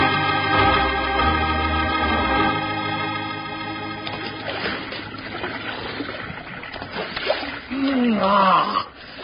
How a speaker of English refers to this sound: You know, Bill, there just ain't nothing to beat a nice long swig of fresh water out of a cool mountain stream. Mm-mm, better than pink lemonade.